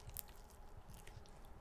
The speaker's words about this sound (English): Get ready to listen to more chewing, everybody. It's going to be great.